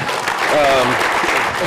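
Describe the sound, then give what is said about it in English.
A steady burst of crowd applause, dense and fairly loud throughout, with a brief voiced call or cheer rising over the clapping near the start. “Group hug? Or at least some applause.”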